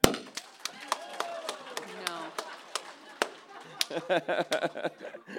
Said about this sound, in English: It was really nice to hear a smattering of mad applause. Which I've never really heard in my life.